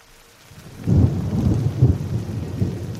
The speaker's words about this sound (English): It's a cold, drizzly December morning on Larch Mountain, the highest freestanding peak in Clark County, Washington